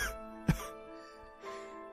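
A man gives one short, sharp cough as he sits up, followed by a softer, rougher exhale a second later, over a faint steady hum in the background.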